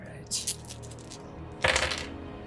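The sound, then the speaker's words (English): Four dice clatter and rattle across a hard surface in two short bursts, crisp, with a low murmur underneath, rolled for a stress roll in a game. “I will need you to make a stress roll with 4 dice.”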